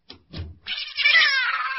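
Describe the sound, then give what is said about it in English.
A cat, Kitty, gives a drawn-out, wavering meow lasting over a second, preceded by two short low rustling thumps. The meow is fairly loud and tonal with a slight downward glide at the end. “Nice, Kitty. Hush.”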